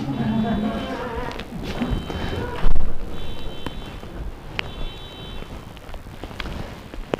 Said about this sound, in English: He also wants somebody to turn off their car alarm.